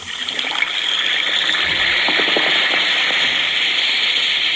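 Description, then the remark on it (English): A steady, bright fizzing hiss of an Alka-Seltzer tablet dissolving in water, with tiny crackling pops of bursting bubbles throughout, constant and fairly loud with no voices. “Listen to it fizz.”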